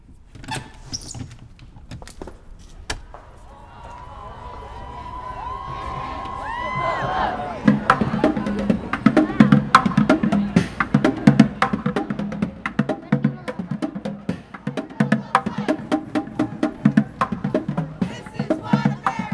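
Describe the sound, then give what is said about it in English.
Thousands of women marching, holding signs and holding hands: the crowd builds from scattered sounds into a dense roar of many voices, with a sustained sung tone and then rhythmic, pulsing shouts as the marchers chant together. “Thousands and thousands of women are walking, singing, chanting, holding signs, holding hands.”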